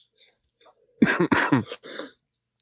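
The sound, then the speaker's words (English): A loud throat clearing by a person who is sick: a cluster of rough, gravelly bursts in quick succession, then a softer follow-up. Faint breaths and mouth noises come before and after. “So I'd like to apologize for the coughs and the sniffles on this episode, everyone.”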